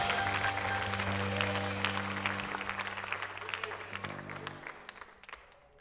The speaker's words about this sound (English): Why don't you give the Lord a hand clap of praise? Say, thank you, Jesus.